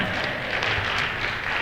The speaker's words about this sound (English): You can clap for that, right?